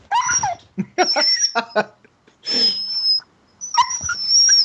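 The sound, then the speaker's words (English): A female sled dog whimpers and yips in several short bursts, its high whiny cries sliding and squealing between brief pauses, with a little talk faintly mixed in. “I have 15 sled dogs.”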